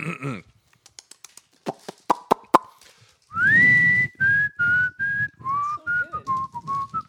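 A few sharp clicks and taps, then a person whistles a bouncy tune in short, clearly phrased notes that rise and fall for several seconds with no talking.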